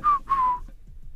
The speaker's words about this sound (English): How I talk and whistle at the same time.